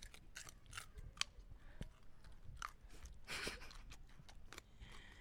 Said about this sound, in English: going for the small bites technique. They both started at the small end of the carrot.